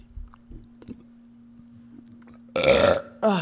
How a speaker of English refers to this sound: Don't burp, ladies.